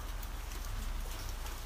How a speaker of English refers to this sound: That's actual rain, you guys. Okay. Oh, wow. We're in a screened-in porch. Oh my. Oh my gosh. This was the perfect time to record an episode. It was sunny all day until now.